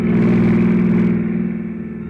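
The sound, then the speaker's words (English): A long yellow convertible car, headlights on, sweeps in fast: its engine roars loudly with a steady, revving drone, holding strong for about a second before easing off slightly toward the end. No voices are heard. “When the sudden splash of a pair of headlights sweeping my way fast sent me sprawling for cover without so much as a reason why.”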